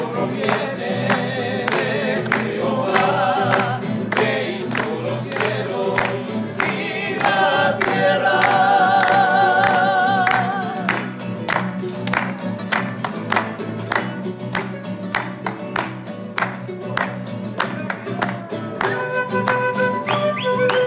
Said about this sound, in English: members of this church had come to sing songs of worship in Spanish and then in English